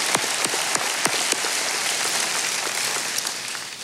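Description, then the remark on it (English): A crowd claps steadily, dense overlapping hand claps forming a continuous, even wash of applause with a few sharper individual claps standing out; no one speaks. The applause is for a pastor, honoring his 42-year ministry as lead pastor. “Yeah, you can clap for him.”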